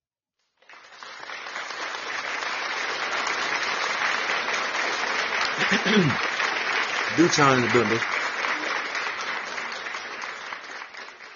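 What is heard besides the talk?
round of applause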